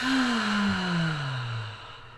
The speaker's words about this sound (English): So we have to do deep breathing. So now let's say breathe in through your nose and out through your mouth.